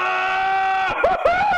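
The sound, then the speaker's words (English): A man lets out a loud, sustained excited yell in reaction to the news that Taysom is back, his voice holding a strained high pitch before breaking into a couple of shorter whooping shouts near the end. “yell as his reaction.”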